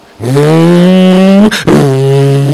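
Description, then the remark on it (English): A race car engine roars at a steady, buzzing pitch, cuts out briefly as it downshifts for a turn, then comes back slightly lower and keeps droning loud. “apparently they're at Le Mans. I don't know. Downshifting for the turn.”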